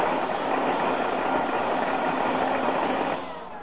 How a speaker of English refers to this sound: I fixed your vacuum cleaner for you